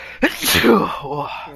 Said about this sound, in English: I'm gonna sneeze.